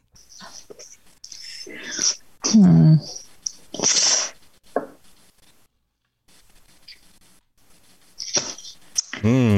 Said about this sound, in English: I can hear the marker making like squiggly sounds.